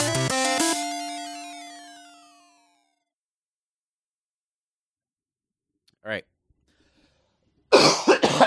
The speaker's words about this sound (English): Oof. Get all your coughs out. Jesus, get that on the mic, man. Do you want water? Yes, please. Ooh. I've been phlegmy. Mm. I think I had like a sinus infection.